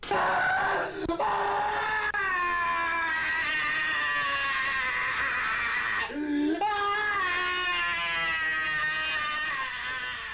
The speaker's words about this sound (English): And we see John's still living head inside, and he starts screaming, and let's hear John scream. It's so great.